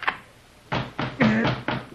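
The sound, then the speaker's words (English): Someone fumbles at a door held by a safety lock system: a quick run of five or six clunks and rattles of handle and latch, one with a short metallic squeak, and no voices. “Come on, stop your fumbling. Open the door.”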